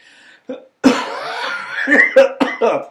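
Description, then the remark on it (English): A loud coughing fit: a series of harsh, hacking coughs in quick succession with a strained, wheezy drawn breath between them, like a lingering whooping cough. “That's the remnants of whooping cough, folks, you know.”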